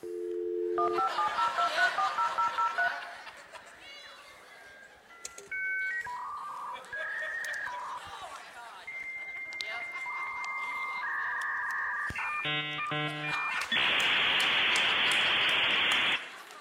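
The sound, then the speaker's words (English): A dial-up modem connecting to the internet: a run of dialing tones, then a long sequence of shifting beeps and warbling handshake tones, ending in a loud burst of harsh hissing static, all clear. “somebody in the next room didn't know you were on the internet, picked up the phone”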